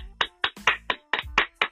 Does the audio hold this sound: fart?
no